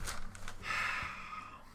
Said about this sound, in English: No, I'm yawning because I'm tired. I'm yawning because I'm bored.